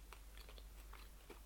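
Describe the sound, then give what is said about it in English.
Quiet chewing of soft white bread with hundreds-and-thousands sprinkles: several short, slightly crunchy mouth sounds in an irregular rhythm, with no talking. “It kind of disintegrates in your mouth as you chew it.”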